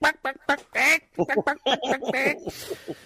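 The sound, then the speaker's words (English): Someone imitates a chicken squawk: a quick run of loud, nasal, squawking bursts, choppy and uneven in rhythm, trailing off into a breathy hiss. “The detectives were grilling her again, and she was like, yeah, shaking her head and doing the dance and doing the chicken squawk.”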